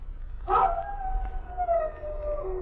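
A dog named Barnabas lets out one long howl that starts with a brief, rougher burst, then holds a steady, slightly wavering tone that slowly falls in pitch over a low rumbling background.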